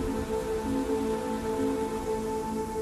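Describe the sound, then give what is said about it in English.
Steady storm rain pours down in a dense, continuous hiss, with low rumbling texture and a faint tonal hum running underneath throughout, no voices present. “We wait till the storm's done, and we get out of here.”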